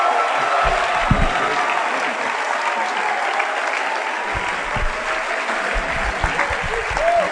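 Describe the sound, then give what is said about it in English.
A church audience applauds to welcome a man of God, a dense wash of many hands clapping throughout, fairly loud and sustained, with faint crowd murmur and occasional low thumps beneath. “let's invite the man of God with a big round of applause.”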